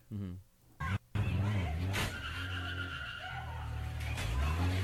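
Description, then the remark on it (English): A car with a custom wrap is driven with a loud, sustained engine roar and squealing, skidding tires, broken by a brief cutout near the start, with voices mixed underneath. “Is that a Dodge Challenger he's driving?”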